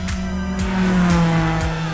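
A loud car engine at Speed Vegas in Las Vegas roars as it accelerates hard, its pitch climbing steadily, with a high squeal of tires running through the continuous two-second burst. No voices are present.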